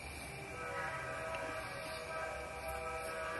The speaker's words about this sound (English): Their train has arrived. That must mean platform 12.